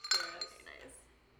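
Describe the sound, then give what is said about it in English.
Glasses clink together in a quick toast, a bright ring at the start followed by a second lighter tap, then a soft fading shimmer with faint background murmur. “I wanted to take a shot every time we were about to say something that would disappoint our parents”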